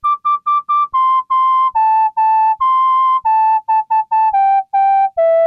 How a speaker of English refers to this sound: Digging the MIDI whistle check.